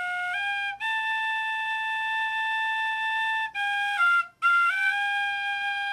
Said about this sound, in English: So I bought a penny whistle and tried that for the first time, working that cheap but cheerful sound as if I knew how to play one.